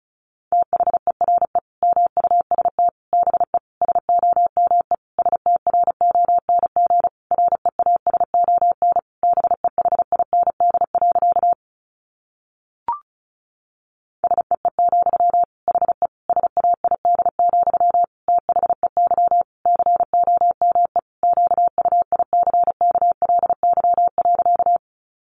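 Rapid Morse code at about 35 words per minute: a single steady-pitched beep keyed on and off in fast dots and dashes, clear, with a brief pause midway and no voices.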